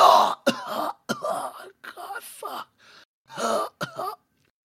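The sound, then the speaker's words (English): A voice imitates a character pierced through the chest coughing up blood: a bout of harsh, gagging coughs mixed with strained groans, several sharp bursts in uneven succession, fairly loud with brief pauses between. “and he coughs up blood, the wooden sword dropping out of his hand as he is just pierced over his arm.”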